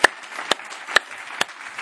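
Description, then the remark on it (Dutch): Applause from a church audience giving Jesus a hand: four sharp, prominent claps land at a steady pace of about two per second, over a faint, continuous bed of lighter scattered clapping. No one speaks. “Come on, let's give Jesus a hand.”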